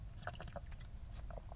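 Quiet wet mouth sounds of someone sipping water: a few soft clicks and small swallowing noises over a low, steady background hum, with no talking.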